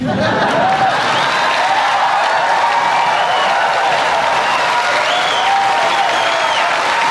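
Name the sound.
audience applause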